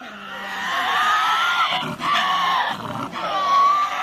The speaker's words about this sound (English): It's a sound that hasn't been heard in the wild on Australia's mainland for centuries, the screech of a Tasmanian devil.